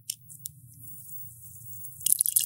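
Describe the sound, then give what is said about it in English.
Helles-style lager beer, 5.2% alcohol, being poured into a glass, a soft liquid rush over a low steady hum, then a bright crackling fizz of foam swelling near the end. “I'm pouring it in right now. Those are not sound effects, people.”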